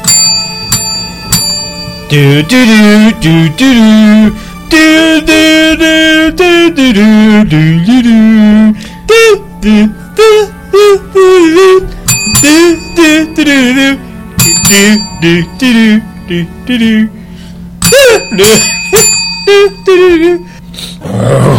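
Electronic doorbell chimes play a slow, ominous march melody from Star Wars, loud, with steady rhythmic notes repeating over about twenty seconds and no talking.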